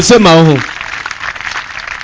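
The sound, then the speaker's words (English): A voice calls out briefly, then a crowd breaks into steady, scattered clapping that continues at moderate volume, like an audience applauding themselves. “Clap for yourself.”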